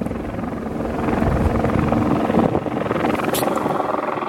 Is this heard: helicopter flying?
yes